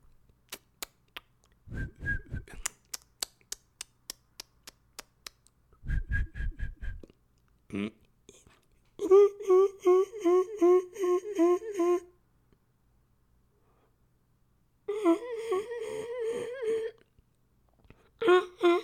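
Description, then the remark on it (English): A voice imitates grasshopper chirping: a run of sharp clicks and short raspy bursts, then two longer stretches of rapid, pulsing, whistle-like trills, fairly loud with pauses between. “That's kind of how grasshoppers sound in a sense, right?”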